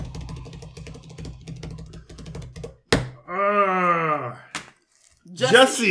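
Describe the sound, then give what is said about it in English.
A voice imitates a drum roll with a rapid, rattling buzz lasting a few seconds, then breaks off into a drawn-out, wavering vocal tone and a brief burst of voice. “Drum roll, please.”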